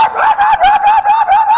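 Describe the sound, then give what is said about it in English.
A small dog yelps rapidly and continuously on the other side of a fence, a string of high-pitched yips in quick rhythm, loud, with no talking. “And that little dog is on the other side of the fence and just a yelping.”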